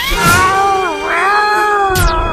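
A cat lets out one long, loud meow, its pitch wavering and rising again before it fades with a brief breathy sweep at the end.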